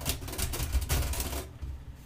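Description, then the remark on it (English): Rapid, clacky keystrokes from an old-timey typewriter-style keyboard, a dense burst of clicks for about a second and a half before stopping, with no talking. “I have an old-timey keyboard. Do you hear it?”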